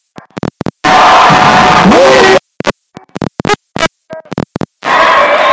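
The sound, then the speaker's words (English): A crowd at a women's basketball homecoming blackout game roars and cheers after a made 3-point shot, in two loud, sustained bursts separated by a stretch of sharp, choppy noises and quieter gaps, with the noise swelling again at the end. “This crowd is ruckus, man. They are all over the place, man.”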